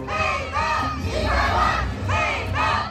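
A large crowd chants loudly in unison at a political rally in Taiwan, voices rising and falling in repeated rhythmic call-and-response bursts of "Made in Taiwan".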